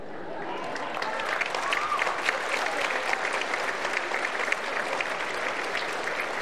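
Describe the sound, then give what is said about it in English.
A large audience at a live show applauds steadily, a dense wash of clapping that holds at an even level throughout, with a few faint voices and cheers mixed into the crowd noise. “Wow, what a crowd. So many here.”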